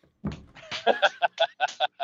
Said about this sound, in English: Hello, forearm slap.